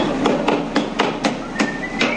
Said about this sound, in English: cracking sumptuous-looking dungeness at his stand on the wharf, but it's not local. We are getting fresh crabs. They're just coming from Washington.